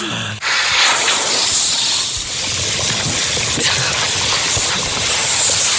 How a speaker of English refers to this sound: Someone skiing, pouring gravy on hot chips. Now, we haven't heard this, but this must be the most ludicrous piece of shit audio that could ever exist in radio.